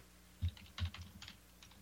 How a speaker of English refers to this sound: I'm not. Yeah, that was me typing. I'm just searching for more stuff.